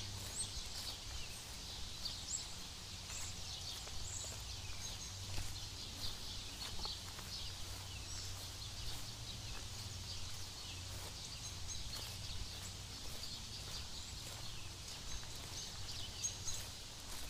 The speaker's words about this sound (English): The birds are excited, singing and playing. Enjoying their existence.